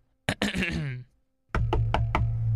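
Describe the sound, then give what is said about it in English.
Four quick, evenly spaced, loud knocks on a door over a steady low hum, preceded by a brief rising and falling tonal sound. “Oh, look, I think he's at the door.”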